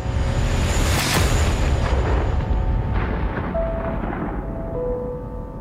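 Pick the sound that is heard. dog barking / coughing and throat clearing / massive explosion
massive explosion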